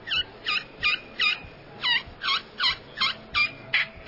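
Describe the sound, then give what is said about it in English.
A glass pot call, with the striker held at about the 1:30 position, plays a kee-kee turkey call: about ten short, high, whistling yelps in a steady, evenly spaced rhythm, clear with no talking. “On glass is what you really want to look at, but here's 1:30. Kiki.”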